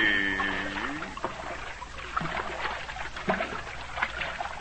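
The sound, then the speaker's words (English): Swirling, bubbling water sounds of swimming down underwater to the bottom of the sea, a steady murky wash with occasional gurgling bursts, opening with a brief warbling tone. “Swim down now, little master. Straight to the bottom of the sea.”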